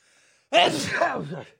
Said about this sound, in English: Excuse me. I think the correct response to a sneeze like that is God bless you.